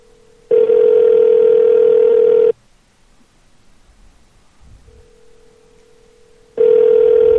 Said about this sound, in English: Is this ringing? Or is it a phone ringing soundboard? Because I don't see it on Skype. Oh no, it's on my end.